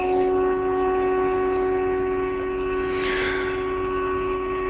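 Storm warning sirens drone as a steady, sustained tone through the whole stretch, fairly loud and unbroken, with a brief breathy rush of noise partway through.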